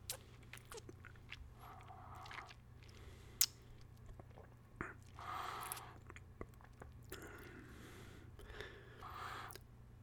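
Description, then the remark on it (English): Wet mouth sounds of liqueur being swished and worked around in the mouth while tasting it, with soft smacks and slurps repeating irregularly over a low steady hum; no one speaks. “Had to take a break for a sip of water between that, but let's have another taste and then I'll give you my impressions of the complex flavors.”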